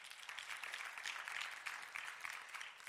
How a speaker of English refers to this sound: And everybody says, amen. Amen. Give the Lord a great clap offering, amen.